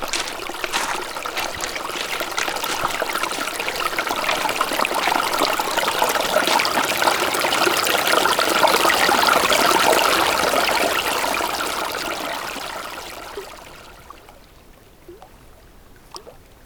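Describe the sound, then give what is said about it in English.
A brook trickles and babbles steadily, swelling a little fuller midway before fading away, leaving a few faint drips near the end. No one speaks. “The brook yielded no fish, paddling upstream forevermore.”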